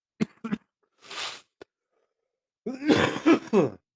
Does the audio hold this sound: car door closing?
no